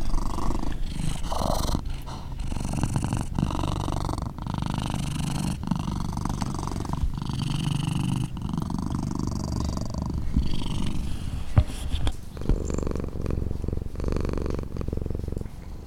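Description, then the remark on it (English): Cats, residents of the Pretty Paw Lounge, purring: a steady low rumbling that pulses continuously for the whole stretch, with a few louder meow-like cries breaking through near the start and again toward the end. “I hope those meows and purrs provided some levity to your day.”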